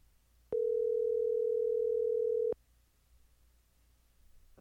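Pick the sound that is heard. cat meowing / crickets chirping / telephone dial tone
telephone dial tone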